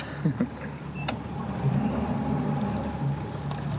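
A boat drags through dense swamp undergrowth, with close rustling and scraping of brush against the hull, a sharp snap near the start, over a steady low rumble.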